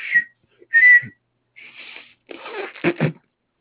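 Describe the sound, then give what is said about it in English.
A man whistles a few short, bright notes with gaps between them, then makes breathy, blowing sounds through his lips, fairly loud with no talking. “… makes a big show of blowing his lip through his lips, which quickly turns into him whistling a little tune.”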